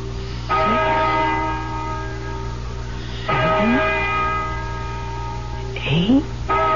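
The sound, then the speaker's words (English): A deep church bell tolls slowly, three resonant strikes roughly three seconds apart, each ringing out and fading into a long humming decay before the next, with a fourth just beginning. “Listen to that bell.”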